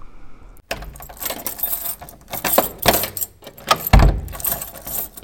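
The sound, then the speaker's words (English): A key jangles and scrapes in an apartment door lock in a busy series of metallic rattles, broken by a solid low clunk as the bolt turns and the door unlocks. No one speaks. “As soon as Ryan's key unlocks the door, I kiss him with full force.”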